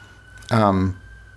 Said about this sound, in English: I don't know if you can hear that fire engine. But my windows are closed today because the air conditioning's on.